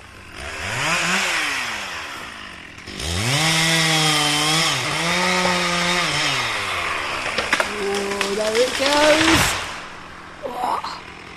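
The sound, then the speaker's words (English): A chainsaw engine roars steadily as it fells a big tree, its pitch rising and dipping with each rev, then cuts out abruptly near the end, leaving only a faint brief rustle. “Obviously, we wouldn't be within falling distance of the tree when Paul starts to fell.”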